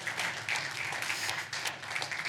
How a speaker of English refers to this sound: Can you say amen? Give the Lord a hand clap of praise, somebody. Hallelujah.